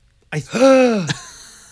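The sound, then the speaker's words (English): A single loud, theatrical gasp, voiced and drawn out with a rising-then-falling pitch, breaking sharply from silence and trailing off breathily. “Gay gasp.”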